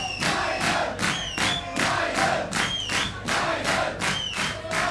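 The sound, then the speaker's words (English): A small, rowdy crowd in a club chants a band's name over and over in a steady, loud rhythm, with individual voices standing out from the group. “You hear like the individual voices of …, ….”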